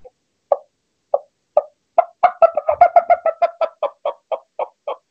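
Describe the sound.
A person imitates a turkey hen's fly-down cackle with natural voice, the call a hen makes when she comes off the limb and flies to the ground: a few spaced clucks that speed up into a rapid, excited run of sharp, popping cackling notes, then slow again, fairly loud.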